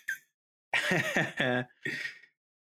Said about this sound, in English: trying to waft the perfume that you were spraying, but accidentally got, like, a mouthful of weed and coughed instead.